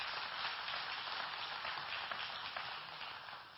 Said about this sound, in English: But I hope you got something today out of the message. If you did, give him a clap offering, please. Give him a clap offering.